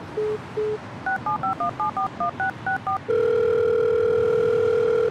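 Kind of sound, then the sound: signal or alarm, telephone keypad dialing tones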